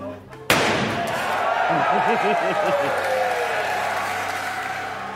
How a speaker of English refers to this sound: along with its stainless steel body that can supposedly stop a bullet. And they demonstrated this by having lead designer Franz von Holzhausen hit it with a sledgehammer. Don't hold back.